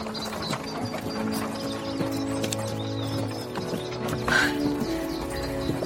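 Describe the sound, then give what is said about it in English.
Horse hooves clip-clop on a road near Mountby at a steady walking pace as the horse is driven home, accompanied by a continuous creaking, rattling mechanical sound. No one speaks. “Just pull to the left or the horse will walk straight up to the house.”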